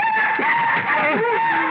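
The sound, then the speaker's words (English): A night bird calls with wavering, swooping cries over a steady high, whistling tone, continuous and fairly loud for the whole short stretch, with no talking. “It's just another night bird, Everts.”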